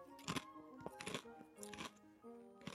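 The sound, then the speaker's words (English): Crunchy chewing on pigs-in-blankets flavoured crisps at a table in the Moon Underwater, four bursts of crackling bites spaced roughly evenly apart, heard over a faint steady hum with no talking. “Sounds like a good crunch. Like ASMR, this, isn't it?”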